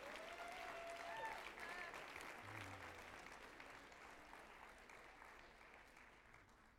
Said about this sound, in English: Amen. Let's give the Lord a round of applause. Come on, let's give Him a shout this morning.